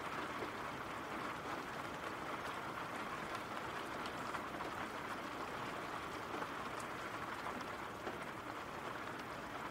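Steady rain falls without pause, a dense, even hiss of countless drops with faint scattered taps, holding the same soft level throughout and no voices.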